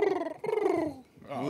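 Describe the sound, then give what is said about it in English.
A person imitates a bird call with their voice, making two drawn-out, dove-like cooing hoots that slide downward in pitch, then a shorter third coo after a brief pause, fairly loud. “Bird call.”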